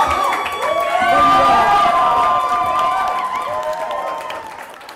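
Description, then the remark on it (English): A crowd cheers and whoops over a steady bed of clapping, many overlapping voices rising loudly in the first seconds, then slowly tapering off toward the end. “As you could probably tell from the crowd reaction, it was wildly mediocre.”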